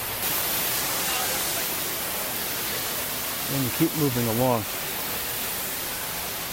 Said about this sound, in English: And you actually move across, you come across the, or underneath the waterfall.